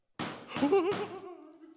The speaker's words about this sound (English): Knock.